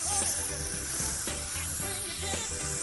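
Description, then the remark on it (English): A spray bottle gives off a steady, breathy hiss that runs for a few seconds without a clear break, over a low, murmuring tonal background. “Sam, whenever you're ready, go ahead and spray that. I want to make sure we hear it too.”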